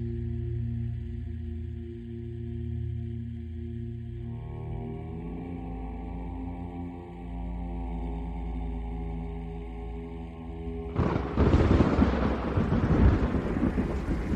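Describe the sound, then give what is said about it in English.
A steady low droning hum with layered tones plays for a while, then lightning strikes the antenna of a mobile weather station and a sudden loud crack of thunder bursts in, rumbling heavily to the end. “Lightning struck the antenna of the mobile weather station, and a fire broke out.”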